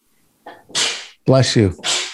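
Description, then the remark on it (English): Two loud sneezes in quick succession, each a voiced 'ah' intake followed by a sharp, hissing 'choo' burst, with no talking in between. “Bless you.”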